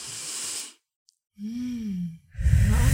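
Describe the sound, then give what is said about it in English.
A deep, full breath: a long airy inhale, a short pause, then a slow exhale with a faint voiced sigh, followed by more loud breathing. Nobody speaks. “Most of us are not breathing, you know, like this, take a full breath.”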